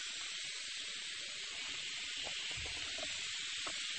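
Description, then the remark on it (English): Water pours steadily into a bucket being filled for mopping, a constant rushing hiss with a few faint low thumps and splashes underneath. No one speaks. “There we are, while the bucket fills up.”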